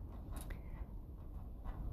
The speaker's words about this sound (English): So, I've written my intention down on a slip of paper.